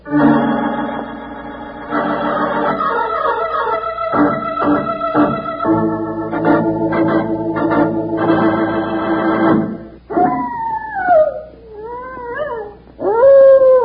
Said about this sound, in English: That's the howl of a prairie wolf, Charlie, and a hungry howl at that.